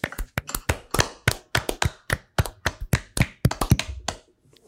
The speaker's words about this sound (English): And as we do at the end of every single bracket, we're going to clap it out.